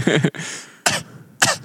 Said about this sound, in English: That's why I coughed. I know. I just wanted to stare at you. You just stare at me while I cough. It's that's just awkward. I just wanted an awkward silence of watching you cough.